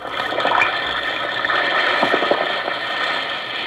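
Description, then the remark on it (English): Steady fizzing of an Alka-Seltzer tablet dissolving in water, a dense crackle of tiny bursting bubbles that holds at an even, fairly loud level throughout with no voices. “Listen to it fizz.”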